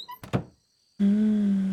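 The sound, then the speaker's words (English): A door swings shut of its own accord and lands with two quick, heavy thuds. A brief silence follows, then a steady, loud low drone starts and holds. “And as you exit, before you have a chance to shut the door, it swings shut of its own accord.”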